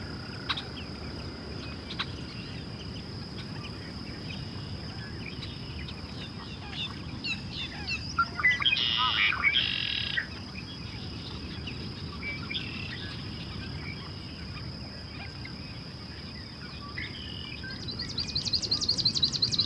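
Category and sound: bird, swamp sparrow song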